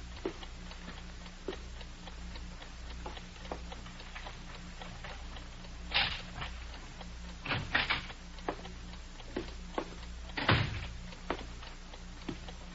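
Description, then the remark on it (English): Keys clink and rattle in a lock with a steady series of small ticks, then a few louder clunks and a door opening, with no talking, as a man takes out his keys. “He's taking out some keys.”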